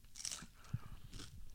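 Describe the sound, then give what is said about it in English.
A crisp crunch as someone bites into a crunchy corn taco shell from Jack in the Box, followed by a couple of softer crackling chews, with no talking. “So I'm going to open up a taco, a Jack in the Box taco. This is on a corn.”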